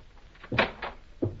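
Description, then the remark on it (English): A door is pushed open as a blindfolded man is led through it, with a short scraping creak followed by a couple of soft knocks and a final thud as it settles, fairly quiet overall. “Now, straight ahead. Through this door.”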